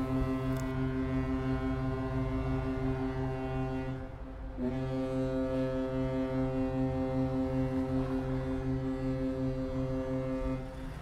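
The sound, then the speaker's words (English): A deep, powerful ship horn blares in two long sustained blasts with a brief break between them, loud and resonant with rich low harmonics, sounding across open water on the Bosphorus strait in Istanbul, Turkey, a busy marine route. “Large tankers, cargo ships, and passenger boats travel the straits that cut the city in half the entire day.”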